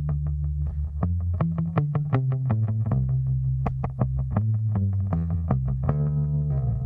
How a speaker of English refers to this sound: And yeah, they sound class. I don't know if you ever tried this. Put flat wounds on your bass and use a bit of tremolo, and you get this really old school kind of sound.